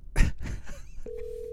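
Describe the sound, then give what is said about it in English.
A short burst of muffled noise, then the steady electronic ringing tone of an outgoing phone call starts and holds evenly to the end, clear and moderately loud. “Oh, then we call Coop.”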